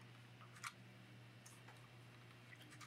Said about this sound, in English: what I'm going to do is actually bring up the old BTL clock. We have a one minute timer.